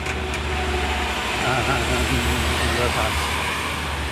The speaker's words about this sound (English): We're just passing a truck now.